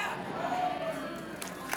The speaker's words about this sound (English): Just because, thank you for the golf claps, just because you feel like you have the right to quit doesn't mean you will be right if you quit, because your gifts aren't yours.